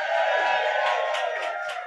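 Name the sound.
audience applause and cheering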